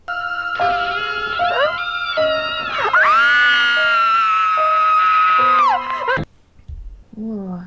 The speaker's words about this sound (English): Sad Sack would like us to listen to 5 different screams and be the amygdala